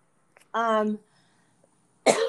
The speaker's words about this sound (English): I don't have COVID. I promise. I've gotten tested twice. I'm just coughing. You're good. Probably because I smoke too much.